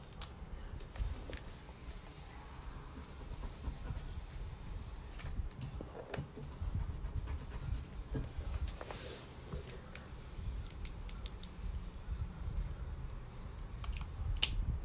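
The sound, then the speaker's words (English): Pens and a graphite pencil are handled, producing irregular light clicks, taps and rattles against a quiet background, with no talking. “Yeah, that's much for the pen and graphite pencil.”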